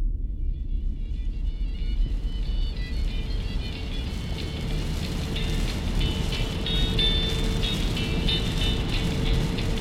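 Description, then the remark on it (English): A truck's steady low engine rumble as it drives through mud in stormy woods under a dense, constant wash of heavy rain on its windshield, too much for the wipers, with faint high squeaks or whines flickering through the noise; no voices, loud throughout. “Heavy droplets of rain bounced off the truck's windshield. Too much for the wipers that drowned under the waterfall of the glass pane that separated me from the stormy woods and the mud that my tires drudged through.”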